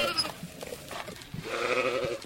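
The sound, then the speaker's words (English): Sheep bleating in an open meadow with soccer goals at each end while farmers feed them: a short, nasal bleat opens, then after a brief lull a longer, wavering bleat rises and holds to the end, fairly loud against a soft background of shuffling noise. “In an open meadow with soccer goals at each end, farmers are busy feeding sheep, chickens, and three boars.”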